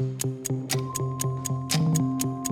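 A game show countdown clock ticks through 30 seconds in a fast, steady rhythm, each sharp tick clear, layered over a sustained tense musical bed with no one speaking.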